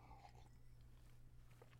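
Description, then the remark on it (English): A quiet sip of a drink, with soft wet mouth and swallowing sounds over a steady low electrical hum, no one talking. “Another sip.”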